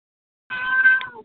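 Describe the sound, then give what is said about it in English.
A single drawn-out meow from a pet cat, clear, rising slightly before trailing off after less than a second, with no talking around it. “Do I hear a baby or do I hear Tammy's ignorant cat? No, it's mine.”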